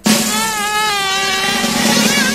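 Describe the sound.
A voice imitates a housefly's buzz: a loud, steady, nasal drone held for about two seconds with a slightly wavering pitch, and no other sounds.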